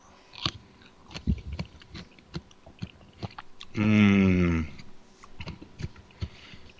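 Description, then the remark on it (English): Crisp crunching as someone bites into and chews a crunchy stuffed jalapeno that turns out not to be a hot one, with irregular snapping chews throughout and a brief hummed 'mmm' midway. “I like them crunchy. I just can't help myself. Hang on, y'all. Let me test drive one of these for us.”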